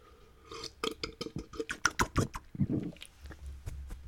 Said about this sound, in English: Let me get a little drink here, a little sippy sip.